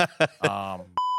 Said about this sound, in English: So clearly we're going to need to beep out a bunch of things.